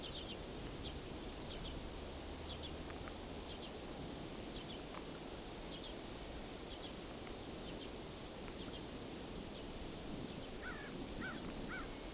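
A flock of about 60 crows in a field in farmland in Haldimand County, about one farm over, caws faintly and repeatedly over a steady hiss of open-air noise, the scattered calls spread throughout with no one talking.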